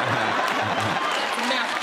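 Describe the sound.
An audience applauds steadily after a joke about Barack Obama as the first black president, a dense, even wash of clapping that stays loud for the whole two seconds, with a few voices murmuring or calling out underneath.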